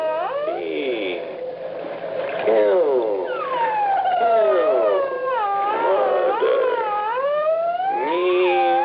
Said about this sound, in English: The high squeak of that dolphin when it slowed down this way. Listen.